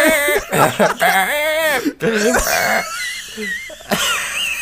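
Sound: imitated heavy wheezing breathing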